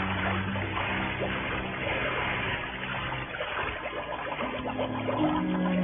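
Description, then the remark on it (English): A diver in a scuba rig with air tank, mask and flippers goes over the side of a boat into the water at the edge of a coral outcropping, followed by a steady wash of churning, bubbling water that continues throughout with no voices. “And then I went on over the side.”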